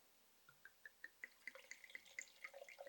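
Cabernet wine glugs from a bottle into a glass in strong pours, in quick bubbly splashes that speed up and rise in pitch as the glass fills. No voices.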